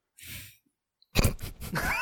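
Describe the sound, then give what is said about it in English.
Crunchy chewing of premium crunchy peanut butter: a short soft mouth noise, a brief pause, then a loud run of wet, crackling bites and chews. “More of what? The crunchy peanut butter or the good ass trades?”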